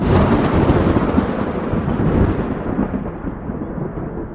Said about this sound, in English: there is an explosion of purple energy that just flies upwards and crackles along the edges of the world storm. Hundreds and hundreds of miles of just this purple, violet lightning that seems to just encompass the sky and then smolders into nothing.